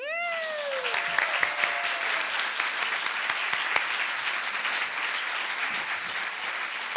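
An audience claps steadily and densely for several seconds after a song, opening with a short, high voice-like whoop that slides downward before the applause takes over and holds at an even level.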